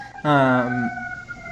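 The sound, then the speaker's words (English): A siren wails as a steady, high tone running through the whole clip, with a brief louder, buzzy blare in the first half. “And, ooh, I can hear sirens in the background.”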